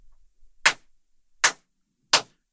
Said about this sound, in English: They lead you back through the entrance hall of the arena, where you find Ophidian and his team, Grey Knight, better known as Silver Song, and Ophidian begins to clap.